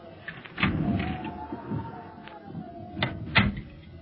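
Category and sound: household object, door being opened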